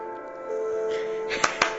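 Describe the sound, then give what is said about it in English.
A soft, sustained tonal music bed plays, then three sharp hand claps land in quick, slightly uneven succession near the end, crisp over the music. “Oh, with hand claps.”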